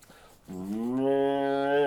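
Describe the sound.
A person imitates a cow with one long, drawn-out moo that starts after a brief pause and swells slightly louder as it holds, clear with nothing else around it.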